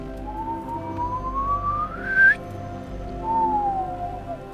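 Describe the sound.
A light, two-part whistle given as a signal: a long tone sliding upward and ending sharply, then after a short pause a softer note gliding downward. It stands alone, with no talking.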